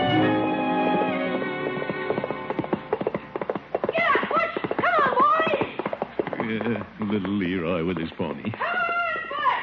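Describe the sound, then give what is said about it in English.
A pony, Butch, whinnies in several rising, wavering bursts while nuzzling someone, as hooves clip-clop in a quick, uneven patter, with voices mixed in beneath the busy, fairly loud scene. “Yeah, he's a pretty sociable pony.”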